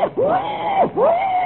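Two loud, drawn-out squealing cries from a wild boar in the jungle at night, each sweeping sharply upward in pitch and then holding a high, wavering tone, one right after the other with no talking.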